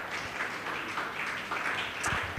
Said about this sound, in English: In the name of Jesus, let's be on our feet. Genuine faith. Give the Lord a much better clap offering.